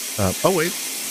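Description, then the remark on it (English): A shower runs with a steady, even hiss that fills the whole moment, while a voice briefly makes a couple of indistinct sounds over it near the start. “Is there someone in your shower again?”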